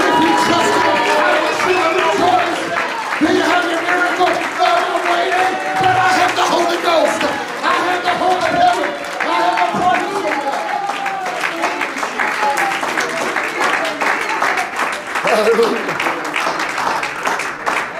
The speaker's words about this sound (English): If you trust him, I wish you would shout. I wish you would clap your hands.